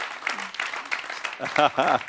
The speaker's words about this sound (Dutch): So give your pastors a big hand tonight and thank them. Geef je voorgangers een groot applaus.